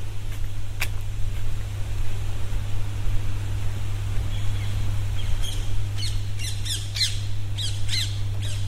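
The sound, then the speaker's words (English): Birds pass overhead, flying in the same direction a person is walking, giving a burst of harsh, repeated squawking calls in the second half, over a steady low hum and wash of outdoor noise. No one speaks. “Birds overhead, you probably heard that, flying in the same direction that I'm walking.”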